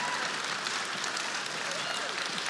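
Scattered, half-hearted clapping from an audience, a steady patter of claps at moderate loudness without cheering, sustained for a couple of seconds.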